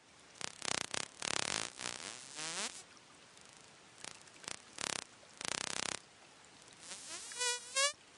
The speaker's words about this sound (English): Now, Steve mentioned that Hector's dolphins make very fast, high-frequency clicks that we can't hear, but which some hydrophones can. This is what they sound like.